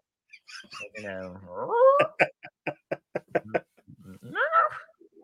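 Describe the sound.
A person mimics a dog: whiny, rising yelp-like vocal sounds, then a quick run of short staccato bursts, and a final whimpering rise, with no other talking.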